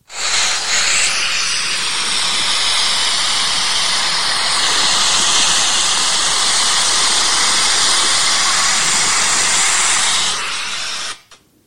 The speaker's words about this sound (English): I would love just to take you all there for just a moment to stand and hear that waterfall and to hear it crashing as the water cascades and comes down. Here's just a quick clip of what that sounds like.